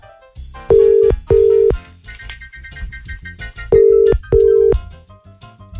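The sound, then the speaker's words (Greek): A telephone rings out on the line with two double-burst ringback tones, steady and fairly loud, over a soft musical bed in the background. “ποιον έχουμε να πάρουμε τηλέφωνο πρώτα απ' όλα.”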